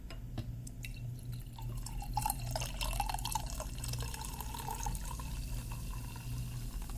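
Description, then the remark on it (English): Sugary soda pours steadily into a glass of cheap whiskey for several seconds, a bubbling, gurgling stream with faint fizzing and a few drips at the start, no talking. “We're going to have to mix that up with something else because, oh boy, cheap whiskey.”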